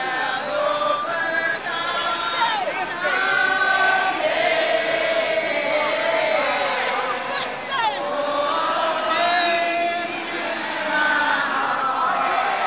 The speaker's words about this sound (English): A month later, when the flag was officially removed, a huge crowd gathered. As the Confederate flag was lowered to the ground, the crowd broke out into the civil rights protest song, We Shall Overcome.